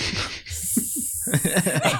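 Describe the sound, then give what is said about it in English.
A person mimics a snake's hiss, a long sustained airy hiss lasting nearly two seconds, fairly loud, with short chuckling vocal bursts mixed in underneath. “It's the snake.”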